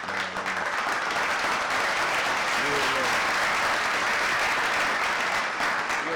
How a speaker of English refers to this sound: If Lab can help me out with a big old round of applause.